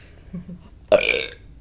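A single short burp erupts abruptly after a moment of quiet, loud, with a raspy, throaty texture that fades over about half a second.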